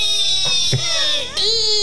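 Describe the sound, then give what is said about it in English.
A person imitating a newborn baby crying: a loud, high-pitched wavering wail with a couple of brief catches and sobs, sustained without any talking. “A baby cry. A mewling. Yeah. Right. It goes like this.”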